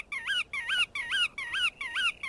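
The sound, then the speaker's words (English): A godwit (kuaka) calling: five quick, evenly spaced nasal notes that sweep up and down, fairly high-pitched and clear, repeated in a steady rhythm with no voices. “No, but the kuaka is, I think this, you can hear something in the call of the bird here.”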